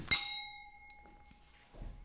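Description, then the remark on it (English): Two drinking glasses clink once in a toast, a bright tap followed by a clear ringing tone that slowly fades, with faint shuffling at the end. “Are we having a drink pause?”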